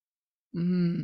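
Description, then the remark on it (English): A single low, voiced throat-clearing grunt, fairly loud, starting after a moment of silence and held for about half a second, from a speaker whose throat is dry after talking for two hours in the dry Midwest. No talking. “You get a little bit of the coughs in the throat here.”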